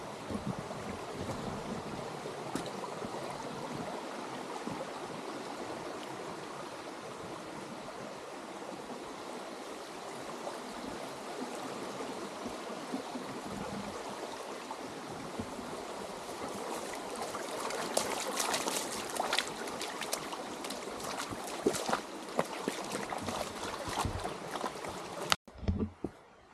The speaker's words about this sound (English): Another small stream crossing.